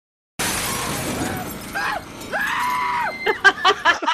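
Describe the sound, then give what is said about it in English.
A woman's scream from the horror film Friday the 13th, about 1 hour 16 minutes in, when a character's head falls onto a car windshield during an escape: a loud crash like breaking glass gives way to a long, strained scream, then a string of short, choppy shrieks and gasps, all intense. “Here is a clip of Trent's infamous scream at about 1 hour, 16 minutes, and 10 seconds into Friday the 13th.”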